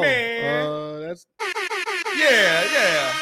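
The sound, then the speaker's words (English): A voice mimics a DJ air horn: one long blaring blast, a brief pause, four quick staccato honks, then a final loud, wavering sustained blast. “You don't have no air horn on that.”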